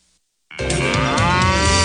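A single loud cow moo begins abruptly after a brief silence and holds as one long, deep, sustained bellow to the end.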